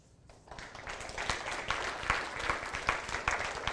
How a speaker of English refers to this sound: You're too kind. That's the first and probably last time I'll ever get applause after a sermon.